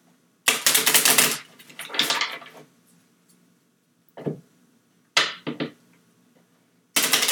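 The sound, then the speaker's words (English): A woman shuffling a deck of tarot cards: several quick, crisp riffling bursts of rapid clicks, separated by short pauses, with one final burst starting at the end. No one speaks. “She shuffles so pretty.”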